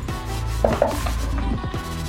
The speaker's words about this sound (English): I'm going to roll these black hole dice from North Foundry.